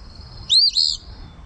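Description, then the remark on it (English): An Eastern Phoebe, a songbird, gives a quick, buzzy two-part call, its raspy "fee-bee," heard once, clear above a low rumbling background. “Again, they're the Eastern Phoebe. And they say Phoebe.”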